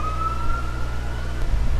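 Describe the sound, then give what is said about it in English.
An emergency vehicle siren holds a steady wailing tone that sags slightly in pitch as it goes by, over a low, constant traffic rumble. No one speaks. “Let's wait a minute till the siren.”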